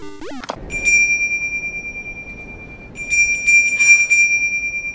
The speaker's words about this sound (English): I'm gonna get that little bell. That's a bell like you see in the Polar Express.